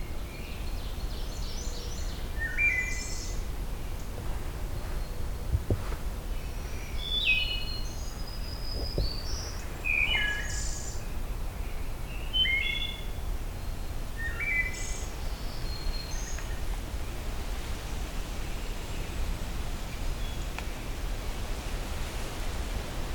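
Faint, distant ruby-crowned kinglet song: scattered bursts of thin, high-pitched notes and short warbled phrases drifting over a steady background hiss of forest ambience, with no voices.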